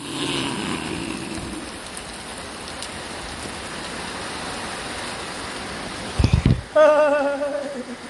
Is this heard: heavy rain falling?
yes